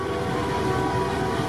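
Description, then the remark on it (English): Many truck horns from thousands of Freedom Convoy vehicles in downtown Ottawa blare at once in a steady, overlapping drone, sustained without pause over a dense wash of traffic noise as one continuous chorus; drone footage from February 1st. “Thousands of vehicles, horns honking all over the place.”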